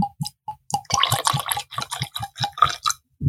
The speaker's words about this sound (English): When you're pouring from the Weller bottle, what it sounds like, because they got that little, what was that called? The little pour bulb at the top there. Listen.